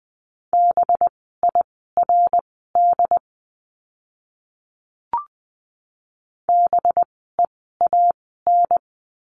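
Morse code practice words at 20 words per minute, from a lesson on the letter b: beeps in a single steady mid-pitched tone, rapid short and long pulses forming two word-length groups separated by a pause with a brief click. No one speaks.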